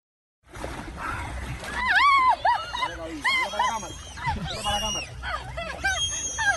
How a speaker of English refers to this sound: Oh, my God. That's not kids screaming. What the heck? The dolphin.